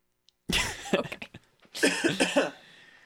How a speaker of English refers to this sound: That's your punishment for touching my mic. I made sure you could hear the coughs a little bit. Okay, good. Please cough directly into the microphone.